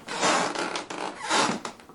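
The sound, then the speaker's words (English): A wooden floor creaks on a summer night in two drawn-out, raspy groans, one after the other, fairly loud with no voices. “Before he could turn around, though, he heard the floor creak.”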